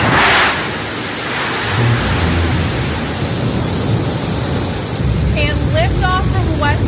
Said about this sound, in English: Mission Control has confirmed New Shepard has cleared the tower on her way to space from the West Texas desert, carrying lunar lander technology, as well as New Shepard's first ever art installation.